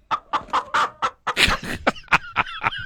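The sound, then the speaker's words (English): A chicken clucks in a quick, uneven run of a dozen or so short, sharp clucks, loud and clear with no one talking over them. “It's almost like there's a chicken right here in the room, isn't there?”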